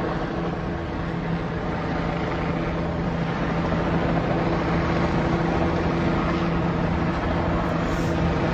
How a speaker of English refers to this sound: More and more helicopters.